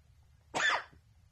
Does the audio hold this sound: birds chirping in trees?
no